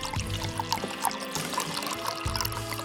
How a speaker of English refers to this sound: He decanted the cheap wine and winced as he poured some into Christophe's glass.